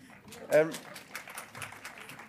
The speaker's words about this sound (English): Thank you for clapping, but I detected it was a bit nervous